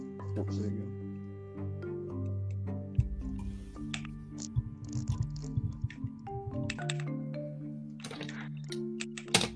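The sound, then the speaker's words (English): Glasses being picked up and dropped: soft handling rustles, a few light ticks and a brief clatter, heard over a steady low hum with faint voice-like murmuring. “That was me picking up my glasses and dropping them.”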